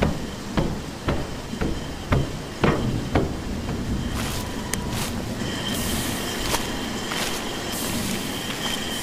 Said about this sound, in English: The train stopped.